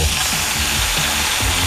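A grill sizzle sound effect in a promo on radio station 95.9 WATD: a steady, crackling hiss of food sizzling on a hot grill, loud, holding constant for a couple of seconds with a faint low rumble underneath.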